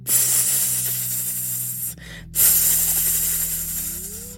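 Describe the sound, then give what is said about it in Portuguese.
A serpent hisses at midnight in two long, loud, airy bursts split by a short pause, with a steady low hum droning underneath throughout. “À meia-noite, escutou um sibilo.”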